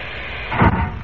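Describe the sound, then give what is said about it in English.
A steady, loud hiss of compressed air forcing water out of a diving bell's chamber after a white button on the panel is pressed, closing the outer door at the same time; it swells into a deeper gurgling surge midway before settling back to a rushing roar. “But when I press this white button on the panel, compressed air forces the water out of the chamber and closes the outer door at the same time.”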